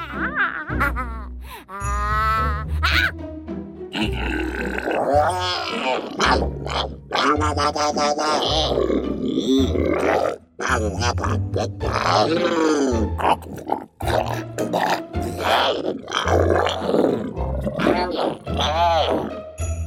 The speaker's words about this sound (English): Fun Monsters from Articulated Sounds is a vocal collection of 18 little cute monster voices. You get over 2,000 generic vocalizations recorded by voice actors, usable for cartoons, games, and so on. All in 192 kHz sample rate and including metadata.